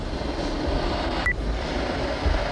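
A snow leopard hisses in one long, steady, breathy rush of noise lasting a couple of seconds, with a brief thin squeak partway through and no voices.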